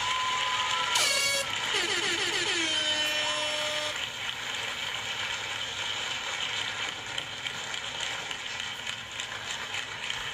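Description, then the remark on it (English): Loud, blaring air horn blasts sound for a few seconds, their pitch wavering and sliding, then give way to a steady wash of background noise. “One more round of applause, and I'm actually going to give a motherfucking air horn, okay?”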